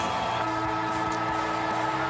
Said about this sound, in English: The siren sounds for full time at TIO Stadium in Darwin. A famous victory for the Suns, keeping their 2023 season alive.